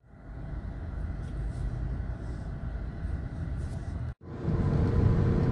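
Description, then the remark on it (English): Steady low rumble of a car heard from inside the cabin, continuous and fairly loud, with a brief cut-out near the end before the droning resumes. “doing a podcast recording from inside my car.”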